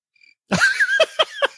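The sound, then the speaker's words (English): A cricket chirping sound effect plays loud, a quick rising trill followed by a run of short, evenly spaced chirps, with no one talking over it. “The cricket sound?”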